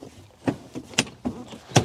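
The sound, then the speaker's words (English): A truck's rear seat cushion being lifted by pulling a small tab: a handful of sharp plastic clunks and latch clicks spaced unevenly over about two seconds, with no voices. “you can lift the seat cushion, right?”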